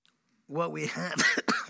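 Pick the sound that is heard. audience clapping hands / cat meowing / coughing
coughing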